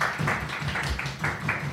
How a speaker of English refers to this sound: Can I please get a big round of applause